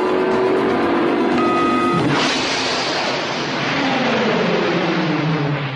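The engine of the car Kit hums steadily, then the turbo boost button is pushed and a sudden loud whooshing turbo-boost surge kicks in and roars on with a slowly falling pitch, continuous, with no talking.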